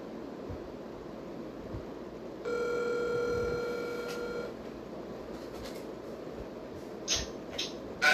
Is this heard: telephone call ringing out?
yes